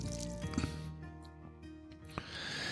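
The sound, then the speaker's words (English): A drink is poured steadily into a glass, a continuous gurgling fill with a few small splashy drips, lasting about three seconds with no talking. “I'll pour you a drink.”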